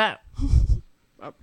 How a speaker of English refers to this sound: But that's a sound I hate. I heard it that That's a sound I've been trying not to do. It's very aggressive breathing.